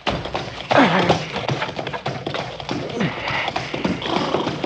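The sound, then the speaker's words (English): A horse gallops in a rapid, continuous clatter of hooves, loud, with short whinnies breaking through the pounding. “Don't you listen, horse. You run. You run.”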